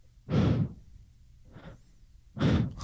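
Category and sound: vocal imitation, imitated heavy breathing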